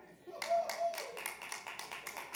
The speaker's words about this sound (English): And we're all clapping at that, but I'll also tell you like it is.